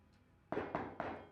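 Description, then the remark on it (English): Three firm knocks on a door, evenly spaced and fairly loud, each a dull thud with a short ringing tail, after a moment of near quiet. “Is that someone in there?”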